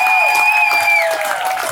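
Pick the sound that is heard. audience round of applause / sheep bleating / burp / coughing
audience round of applause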